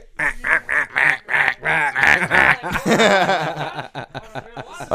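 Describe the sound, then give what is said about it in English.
Someone imitates a duck, making a quick run of loud, nasal quacks in a steady rhythm, then slurring them into a longer, jumbled quacking burst that edges toward a chuckle. “You quack like a duck when you suck.”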